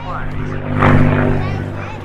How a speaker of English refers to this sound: We're at the Memphis Air Show, and you're listening to the sound of the P-51 Mustang.